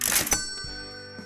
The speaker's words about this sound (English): Apparently on a century-old cash register.